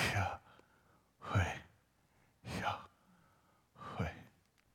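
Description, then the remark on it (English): A voice pronounces the Hebrew divine name YHWH without vowels as four airy, aspirated syllables, each a soft sigh-like exhalation spaced about a second apart, against a quiet background. “When pronounced without intervening vowels, it actually sounds like breathing.”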